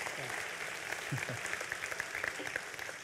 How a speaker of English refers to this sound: Will you give him a great round of applause this morning? Thank you so much.